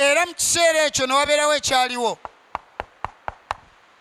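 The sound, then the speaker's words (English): A voice speaks briefly, then Brother Branham makes six sharp knocks in a quick, even rhythm, imitating rapping on a door. The knocks are crisp and fairly loud, with no talk over them. “Brother Branham knocks.”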